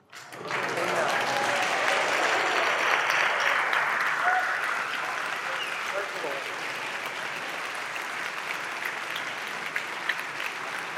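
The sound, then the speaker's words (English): Sustained audience applause at a university event after the executive director of advancement is thanked for unveiling the fundraising campaign's quiet phase, a dense wash of many hands clapping that starts abruptly and holds steady and loud for about eleven seconds, with faint cheering or voices mixed in early. “You're clapping in faith.”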